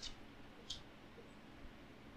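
Two soft, crisp taps of playing cards being laid down on a table by a woman after a rigorous shuffle, spaced well apart, faint against a quiet background hiss with no talking.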